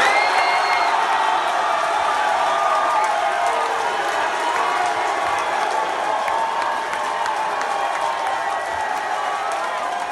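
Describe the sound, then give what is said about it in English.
A comedy crowd at the Skankfest comedy event cheers and applauds loudly and steadily for about ten seconds as comedian Louis C.K. makes a surprise appearance, a dense wash of clapping with shouts and whoops rising through it. “And this is the reaction he got when he made a surprise appearance this weekend at a comedy event called Skankfest.”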